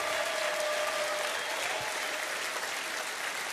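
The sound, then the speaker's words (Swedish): An audience applauds steadily to welcome the evening's two speakers, a dense, even wash of many hands clapping at a constant moderate level throughout, with no voices standing out. “Jag ger dem en applåd.”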